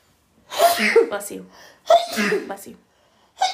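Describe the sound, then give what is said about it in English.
Two loud sneezes in quick succession, each a sharp explosive burst, with the start of a third cutting in at the very end. “Bless you.”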